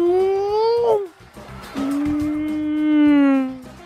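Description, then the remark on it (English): A voice imitates a car going past with two sustained, buzzy droning tones. The first rises slightly and then drops off, and the longer second one holds steady, swells louder, then falls away. “There's a car going past. See how we can do those sound effects?”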